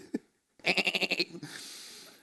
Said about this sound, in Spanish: ¿qué significan esos balidos de oveja que me parece oír, dice Samuel?